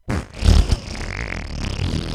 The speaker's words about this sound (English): Oh, Lord. Oh, Joe Biden farted in my face.